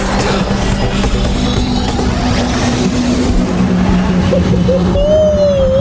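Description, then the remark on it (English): A loud, steady engine roar fills the scene with a deep hum underneath, and a rising whine near the end as the flying car lifts off and accelerates. “Now, everyone, get on the Fantastic Car.”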